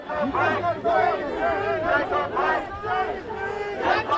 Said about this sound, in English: … family led the march several blocks to the Kenosha County Courthouse while the crowd chanted.